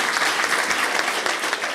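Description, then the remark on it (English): A crowd in Washington, D.C. applauds a call for voting representation in Congress for Americans living outside the states: a dense, even wash of many hands clapping at steady loudness throughout, with no voices standing out. “It's a very receptive crowd to that argument.”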